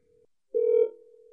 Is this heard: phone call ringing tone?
yes